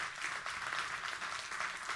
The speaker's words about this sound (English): And how many people have been healed when someone else prayed for them? Come on, clap your hands if you have been.